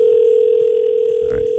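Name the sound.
telephone dial tone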